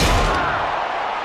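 A steel chair swung by the wrestler Yokozuna, a 500-pound man, crashes into John Morrison with a single heavy slam right at the start, followed by a sustained roar of noisy crowd din that lingers to the end.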